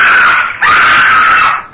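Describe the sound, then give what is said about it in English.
A loud, animal-like yowl: a high, wailing cry that breaks briefly, then swells into a longer sustained howl before fading. No one speaks. “A yowl like that of an animal awakened me.”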